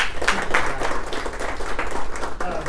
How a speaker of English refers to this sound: How about a round of applause for our panel?